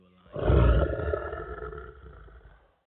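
A single deep lion roar bursts in loud, rumbling heavily for a couple of seconds before trailing off into silence.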